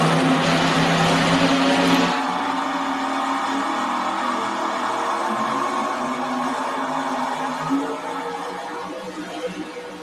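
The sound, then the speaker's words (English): A loud vintage Diamond T truck engine rumbles steadily with a deep throaty tone, revving hard at first before easing into a sustained running drone for the rest of the stretch. “I don't know what that truck is, but man, that sure is pretty. Mr. Diamond T.”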